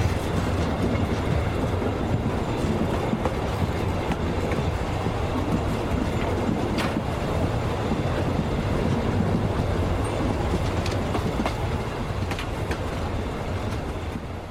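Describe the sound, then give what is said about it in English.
A train rolls along steadily with a constant low rumble, its wheels clacking on the rails now and then. No one speaks, and the noise stays loud throughout. “The echo of the woman's scream faded into the silence of night, just like the clacking of the train.”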